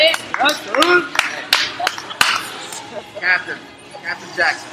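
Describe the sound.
A handful of sharp, scattered claps ring out over excited voices and chatter, a short, thin burst of applause for the man who makes things happen there, fading as the talking carries on.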